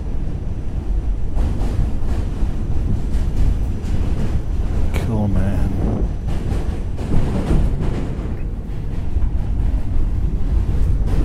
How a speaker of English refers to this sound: It's very cool to be on a subway on a bridge. You're not used to getting good views from a subway, at least in Manhattan, you know.